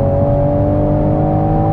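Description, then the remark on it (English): A BMW two-seater sports car engine runs at a steady, loud pitch, a deep throaty drone with a constant tone and no rise or fall. No one speaks over it. “Does sound very nice. It sounds like it needs more of a whoosh to me.”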